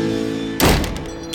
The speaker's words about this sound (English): Fanya stepped into the entryway and slammed the door behind her, knocking the mezuzah onto the floor. She picked up the little brass case and examined it.